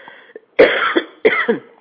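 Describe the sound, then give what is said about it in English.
Two loud coughs in quick succession from a person guiding a breathing exercise, each a harsh burst followed by a shorter rasping catch, with a quiet pause before them. “And if you'll excuse me, I'm going to cough.”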